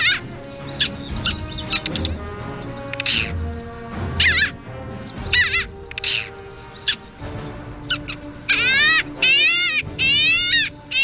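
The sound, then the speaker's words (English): A parasitic jaeger, a seabird of the skua family, gives shrill, nasal calls during migration in scattered bursts, then a quicker run of rising, wavering cries near the end, all over a steady low background hum. “The parasitic Jaeger is a member of the skua family.”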